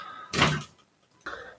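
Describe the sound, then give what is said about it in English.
A sticky door bangs open with a loud, abrupt thud and scrape as a child comes in, followed by a brief quiet and then a second softer rattle as it settles, with no talking. “The door is very sticky and makes a loud noise when it opens.”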